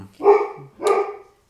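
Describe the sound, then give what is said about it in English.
A dog barks twice in quick succession, two loud, full-bodied woofs about half a second apart, with nothing else in the background. “sorry, I'll let him stop barking.”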